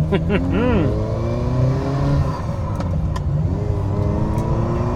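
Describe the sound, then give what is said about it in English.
A Ferrari Mondial T sports car engine revs and accelerates away, its pitch climbing and dropping through several gear changes before settling into a steady, strong drone that fills the whole stretch. “All right, we're going. We're going.”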